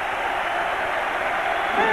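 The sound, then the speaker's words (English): A large football crowd at St James's Park applauds and cheers as the players come out, in a dense, steady roar that holds throughout, with a brief higher-pitched shout or whistle rising out of it near the end. “And the management team and the chairman applaud as the players come out.”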